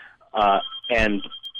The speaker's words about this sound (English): I'm sorry, my phone is ringing here. I think that's probably us.